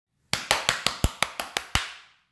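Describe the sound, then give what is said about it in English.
Three children clap their hands in a quick, even run of about nine sharp claps, fairly loud, followed by one faint tap; no voices are heard. “Yes, they clapped their little hands.”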